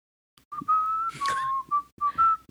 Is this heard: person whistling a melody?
yes